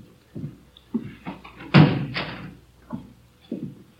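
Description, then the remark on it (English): A door shuts with one solid thud partway through, in room 26, the chief of detectives' office, surrounded by soft, evenly spaced footsteps on a hard floor. No one speaks. “Did you close the door, Friday?”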